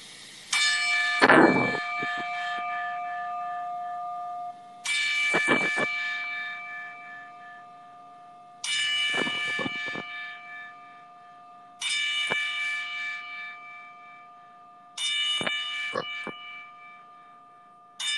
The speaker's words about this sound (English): we want to give out a 10-bell salute for the memory of Shad and also Hana